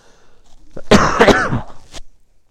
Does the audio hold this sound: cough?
yes